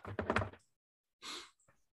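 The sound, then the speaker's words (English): A door closes with a muffled, rattling thump, followed after a short silence by a brief airy swish and a faint click, like a second door shutting. No one speaks. “Got the doors just closing around here.”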